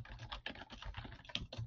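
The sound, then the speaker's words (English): Rapid, irregular clacking of keys on a computer keyboard, fairly loud, with dense overlapping keystrokes and no voices. “Why are you typing on that awful keyboard?”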